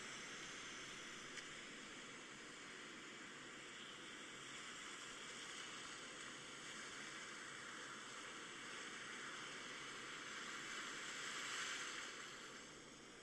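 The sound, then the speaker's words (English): A continuous, hissing wash of ocean surf rolls steadily on a beach, swelling slightly louder toward the end, with no voices. “The sound of the waves is still with you, and you can carry that healing energy wherever you go.”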